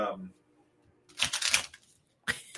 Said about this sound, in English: Do you want me to shuffle the cards? Yeah, that would be great. Get some good sound clips. Shuffle time.